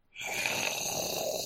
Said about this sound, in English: It coughs up a hairball full of mice bones. Aww, did you have a tummy ache? Was that bothering you?